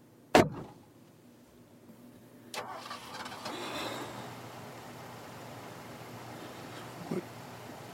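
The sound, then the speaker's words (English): A sharp click, then a car engine cranks and catches, settling into a steady, low idle rumble that continues to the end. Fairly quiet, with no talking. “I'll go feed Bella, start the car.”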